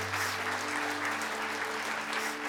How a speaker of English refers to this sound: Church, can we clap for the three people who decided to give their life to Jesus today?